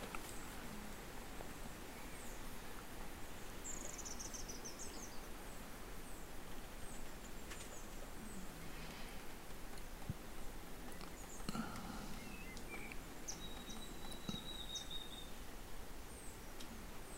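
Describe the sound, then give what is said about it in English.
Faint birds call now and then over a steady outdoor hiss and soft rustling, with a couple of thin chirps and a brief whistle standing out. No one speaks. “Feel and listen to the wind coming, or the birds.”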